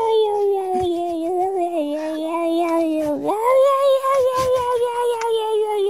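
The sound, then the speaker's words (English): A person imitates the meow of a cat named Bodge with one long, drawn-out, whiny meow that wavers in pitch and swoops upward partway through. It is loud, with no other voices. “I lost the audio we were meant to play her, so I copied it.”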